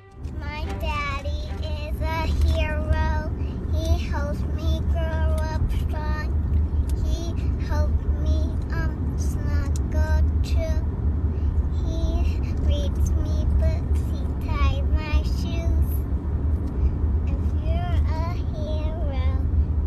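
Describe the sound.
A young child sings a wandering, high-pitched tune close by, her voice rising and falling over the steady low rumble of a moving car's engine and road noise.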